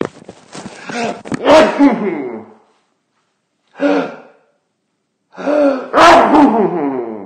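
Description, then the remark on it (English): Loud sneezing with voiced gasping intakes: a long strained build-up, a short breathy burst after a pause, then a forceful sneeze that trails off. “I'm gonna sneeze.”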